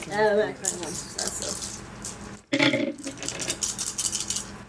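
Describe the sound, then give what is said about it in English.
Dice clatter and rattle across a hard tabletop in a quick burst of small clicks for a dexterity and athletics roll, then a second tumbling roll follows after a brief pause; a voice is heard briefly at the start. “Let's get a dex and athletics roll.”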